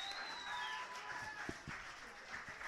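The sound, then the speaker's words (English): An audience claps for a poem at a judged poetry competition, a dense, continuous patter of many hands, with a few faint whistle-like tones drifting over the applause and occasional low thumps. “Hey, if you like that poem, you clap now.”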